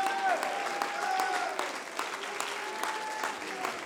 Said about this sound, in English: Stand to your feet and clap your hands unto the Lord, all you people.